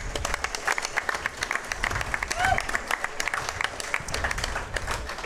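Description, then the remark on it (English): A live audience at an evening turkey-hunting event breaks into sustained applause for brands like Mossy Oak and organizations like Turkeys for Tomorrow, dense overlapping claps at steady volume, with a few scattered voices and whoops rising through the clapping. “I think we need to give a round of applause to brands like Mossy Oak and organizations like Turkeys for Tomorrow.”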